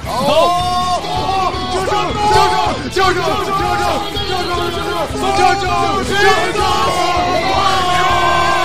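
A group of young men scream and yell together in a loud, sustained chorus of overlapping voices, shrill and excited, filling the whole clip without pause.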